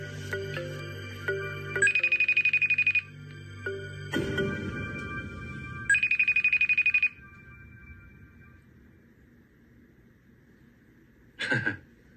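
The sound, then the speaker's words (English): An outgoing phone call to a woman rings back in two electronic bursts about a second long with a pause between, followed by a beep and quiet line noise, then a short chime near the end. “I tried calling her.”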